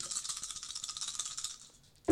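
Seven dice rattle and clatter steadily for about a second and a half in a bright, fast shaking sound, fade briefly, then end with a sudden louder thump.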